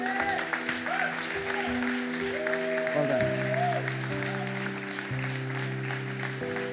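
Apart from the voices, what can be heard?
church audience clapping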